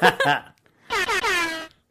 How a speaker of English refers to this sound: I appreciate the air horns because I love them.